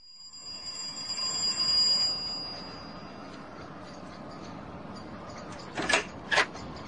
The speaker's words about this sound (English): His doorbell's a bit dodgy. Give it a good push.